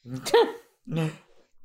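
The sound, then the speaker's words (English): A person fakes a sneeze with their voice: a breathy, pitched wind-up, a short pause, then a second voiced burst, fairly loud, with no other talking. “What a phony sneeze.”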